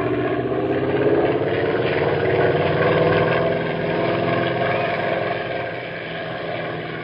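A small airplane engine drones steadily as the plane is flown back home, a loud continuous hum with a slight throb that eases a little toward the end, with no voices.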